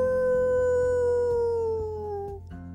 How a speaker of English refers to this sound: Then all of a sudden, she heard it again. Howl!